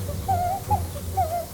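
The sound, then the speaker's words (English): Soft, wavering tropical bird chirps, a few short whistled calls rising and dipping, played from a white noise machine over a steady low hum. “Enjoy the soft chirps of the delicious tropical birds from the white noise machine.”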